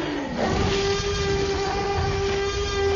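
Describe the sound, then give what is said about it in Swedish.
A loud, sustained Tyrannosaurus rex roar from the first Jurassic Park film, made in a studio by editing together the sounds of five different animals: a rough, rumbling growl with a steady droning tone running through it for about three seconds, with no talking. “Jo, då är det så här att det här lätet som vi precis hörde då, det är en blandning mellan 5 olika djur som man har då klippt ihop i en studio.”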